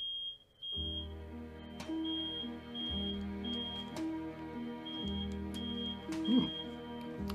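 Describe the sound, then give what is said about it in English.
A smoke alarm in a studio beeps in a steady, repeating pattern of shrill high-pitched tones over a continuous low droning hum. “Smoke alarm's going off here in the studio.”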